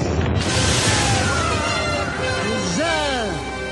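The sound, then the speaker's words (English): Oil well drilling machinery grinds and rattles loudly and steadily for several seconds, a dense mechanical churning, while a voice briefly calls out over it toward the end. “Soon that mighty apparatus will burst forth with its precious fluid.”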